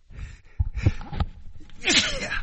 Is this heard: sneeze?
yes